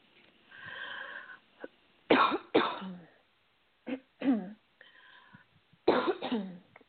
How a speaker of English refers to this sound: Cough being part of clearing.